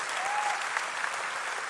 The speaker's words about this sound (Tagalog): If you really believe in that, palakpakan natin si Lord. Parang hindi kayo convinced, mas malakas na palakpak sa ating Panginoon Diyos.